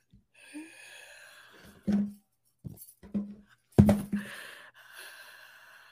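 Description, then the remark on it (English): Someone fakes crying: heavy, breathy inhales and exhales broken by a few short, strained vocal sobs, fairly loud, with no actual words. “They sound like, I hear breathing.”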